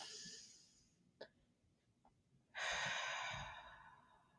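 Slow, deep, controlled breaths taken at the start of a meditation: a long airy exhale trails off, a brief pause with a small click, then a strong, steady rush of breath fills the end. No talking.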